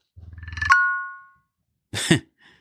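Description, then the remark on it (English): An Apple Watch, started by pressing its digital crown, vibrates in a rapid buzzing pulse for about half a second, then a bright two-tone chime rings and fades out smoothly. After a short pause, a brief voice-like burst follows. “That was a satisfying sound. Yes, it vibrates and it jingles and it's all very excited.”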